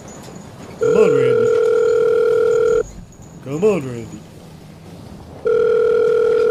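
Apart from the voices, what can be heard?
telephone ringback tone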